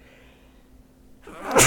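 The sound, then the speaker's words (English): A single sharp sneeze bursts out at the end after a brief quiet inhale, loud, with no talking around it. “Bless you.”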